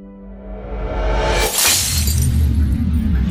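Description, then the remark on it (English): A rising, shimmering build-up swells into a loud, bright shattering burst, followed by a dense low rumble and scattered tinkling fragments, as a single pillar of crystal shatters with a blast of white light, ejecting shards throughout a chamber. “With a blast of white light, a single pillar of crystal shatters, ejecting shards of white throughout the chamber in which Kai had wandered.”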